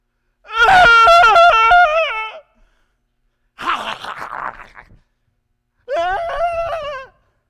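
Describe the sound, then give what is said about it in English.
A 66-year-old adult voice imitates a screaming toddler in three loud, shrill wailing bursts separated by short pauses, the middle one rougher and more strained. “Am I a good toddler? Not at 66.”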